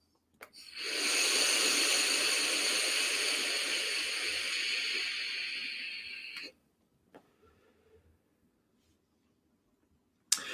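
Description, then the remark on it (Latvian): A long, steady airy hiss of someone drawing hard on an e-cigarette vape set to 60 watts, lasting about six seconds and fading slightly before cutting off, followed by faint clicks and near silence. “Jā, uz 60 tvaiks palika manāmi siltāks.”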